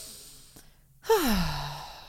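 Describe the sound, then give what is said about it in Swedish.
After a brief hush, a single loud, voiced exhale slides downward in pitch like a long groaning sigh, a person acting out breathing for about a minute through a labor contraction that comes every six minutes. No words are spoken. “Och så liksom andas jag 1 minut och sen fortsätter jag.”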